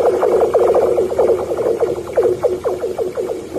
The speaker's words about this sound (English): Another person comments, ice makes this noise at random times when it gets thicker and thinner.